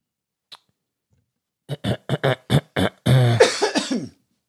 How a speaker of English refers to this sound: … sole contribution so far is clearing his throat.